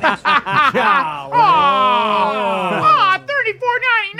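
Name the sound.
audience groaning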